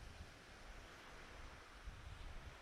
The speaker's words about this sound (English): I did describe today as a very breezy day, and the water is choppy.